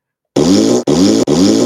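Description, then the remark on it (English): Three loud, buzzy fart sound effects play back to back after a brief silence, each a short rasping blast with almost no gap between them. “4 farts.”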